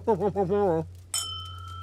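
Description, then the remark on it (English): A voice speaks briefly, then glasses of rye clink once in a toast, with a bright, high-pitched ring that lingers and slowly fades. “Cheers.”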